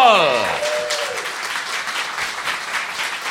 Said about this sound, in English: Clap your hands off like a bastard. It's Ralf Little!